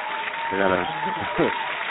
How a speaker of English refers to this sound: Hold on, I got to applaud that.